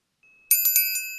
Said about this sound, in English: The clock struck 9.